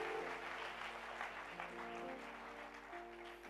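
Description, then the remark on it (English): A church audience applauds steadily to appreciate the Lord, many hands clapping together in a dense, sustained wash of sound, with a faint murmur of voices underneath. “It's a wonderful, wonderful, wonderful clap of him.”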